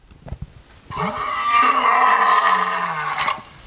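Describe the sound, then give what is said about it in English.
A lion lets out one long, loud roar lasting a couple of seconds, deep and rumbling with a slowly falling pitch, preceded by a few faint scuffling sounds. “Yes, that is a lion roaring.”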